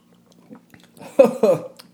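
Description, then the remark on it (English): Wet mouth sounds of someone gulping down a shot of whiskey, two quick swallows in succession after a soft faint hum, with no talking. “Okay, I did it in 3.”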